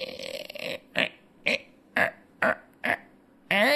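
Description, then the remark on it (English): A voice imitates the rusty hinges of an unlocked door being opened, with a drawn-out creaky squeal, then five short, evenly spaced squeaks, ending on a rising, wavering shriek. No words are spoken. “The hinges are rusty, and it makes a very unpleasant shrieking noise as you enter.”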